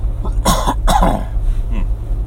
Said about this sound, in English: Sorry, I got a cough right now.